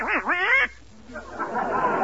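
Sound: duck quacking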